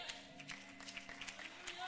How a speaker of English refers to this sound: We may as well go ahead and rejoice and clap our hands